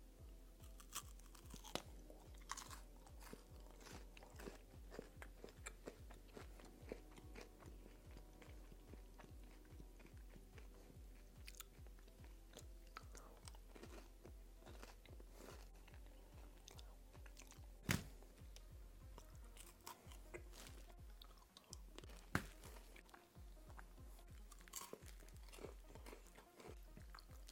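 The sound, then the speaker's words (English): Crunching as a Crunch Bar, a crispy chocolate bar with four segments, is bitten and chewed, with dense, irregular crackling snaps repeating steadily for the whole stretch, loud with no talking. “All right, here's the Crunch Bar going in.”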